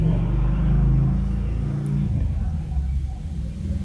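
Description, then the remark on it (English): A passing car rumbles loudly, with muffled radio music or voices thumping from it, then the engine noise eases and fades as it moves away. “They were playing their radio too, so I'm going to give it a second.”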